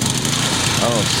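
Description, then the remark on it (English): A snowblower engine runs steadily, a continuous rough, buzzing drone with a low rumble underneath and no change in pace. A brief voice-like sound rises faintly over it near the end. “Oh, snowblower.”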